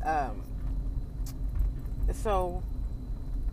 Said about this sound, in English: And so, sorry y'all, I'm driving. You know, anytime I do this, I'm always in the car driving, so y'all know that.